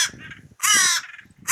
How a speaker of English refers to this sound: Oh! Is that a crow? Is a crow crowing this morning?